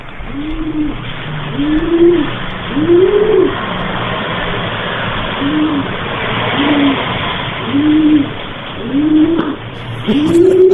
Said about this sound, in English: Passionate sounds. And it sounded, and I've heard this several times since then, their sounds of passion sound a lot like owls hooting. So I have a little bit of audio that I got from the last time.